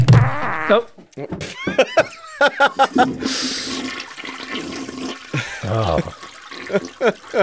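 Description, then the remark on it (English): A toilet flushes with a rushing, gurgling surge of water, set among bursts of voice sounds before and after the flush. “Oh, the toilet flush and everything.”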